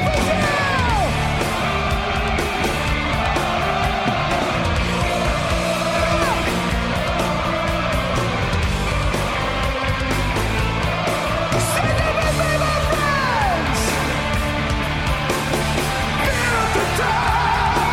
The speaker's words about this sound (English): Their live shows are impeccable, and the crowd response equals that, as shown by this clip from their live show in Rock in Rio.